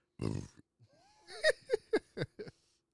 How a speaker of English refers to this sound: Oh, my God. I burped.